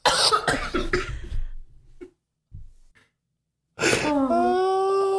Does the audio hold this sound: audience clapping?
no